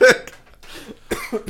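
A harsh cough bursts out at the start, followed after a short pause by a quick cluster of two or three rougher coughs, with faint throaty murmuring in between.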